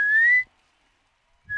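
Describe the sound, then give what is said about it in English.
During a radio bird-call segment on Classic Hits 4KQ, a person whistles an imitation of a storm bird call: a loud, pure note sliding slowly upward, then a second of silence before another whistled note begins. “Now, know the storm bird sort of goes like this.”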